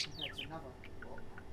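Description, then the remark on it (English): Budgies singing: a burst of quick, high descending chirps opens, followed by scattered short tweets and soft warbling over a low steady hum. “They're singing.”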